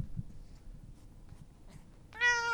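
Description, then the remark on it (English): A single clear cat meow rises suddenly after a couple of seconds of quiet low rumble, fairly loud, with a bright harmonic tone. “He wants to be on the that podcast. That was Bear. What if cats had a podcast?”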